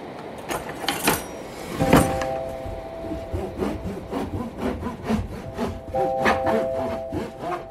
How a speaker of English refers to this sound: That was some of the sounds of me slicing my homemade sourdough, because like so many other people during this pandemic quarantine time, I decided it'd be a good idea to get into sourdough bread baking.